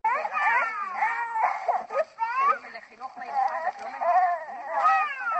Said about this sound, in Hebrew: כך זה תועד במכשיר ההקלטה, בכי קורא הלב של הפעוטות.